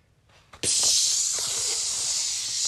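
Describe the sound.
A voice imitates a Glade aerosol air freshener spraying: one long, steady, loud hiss that starts abruptly and holds for about two seconds, with no talking over it.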